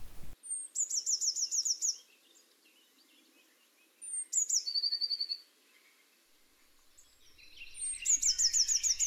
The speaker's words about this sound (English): The blue tit has little trills and gurgles. Americans call tits chickadees, and blue tit often makes a noise that's a bit like the chickadee.